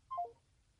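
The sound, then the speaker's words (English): A brief electronic phone beep signals the call starting: two quick tones stepping down in pitch, lasting a fraction of a second, followed by a faint low hum and quiet. “Press 1 to start the call or the call will start at the beep.”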